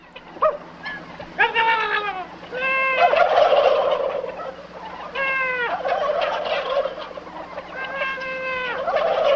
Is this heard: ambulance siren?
no